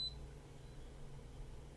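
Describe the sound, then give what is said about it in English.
A single short, high electronic beep from the pressed-and-held left button below the screen of an Instant Pot smart pressure cooker sounds right at the start, then only a low steady hum remains for the rest of the moment. No one speaks. “Oh, it beeps nice.”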